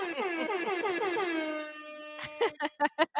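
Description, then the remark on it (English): A loud hip hop air horn sound effect: a long, wavering blast that settles into a steady tone, then a rapid series of short, punchy honks. “let me get out my hip hop air horn, because girl, you deserve all of them.”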